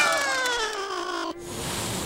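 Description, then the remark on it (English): A single drawn-out cat meow sound effect, loud and slightly falling in pitch, lasting over a second before cutting off into a steady hiss of noise. “Don't kill the cat. Put a sound effect in there.”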